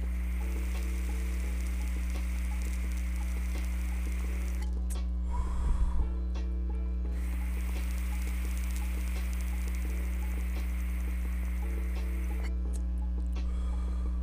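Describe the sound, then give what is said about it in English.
A terp pearl spins under a carb cap during a dab, giving a soft, steady whirring sizzle over a low electrical hum, with a brief clink or shift midway. No one speaks. “And we put the cap on, and then it starts to spin.”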